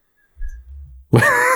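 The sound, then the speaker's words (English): A loud yawn directly into a microphone: a low breathy rumble of an inhale, then a strained, voiced groan that swells and holds until the end. “Just yawns directly into the microphone to let us know to move on.”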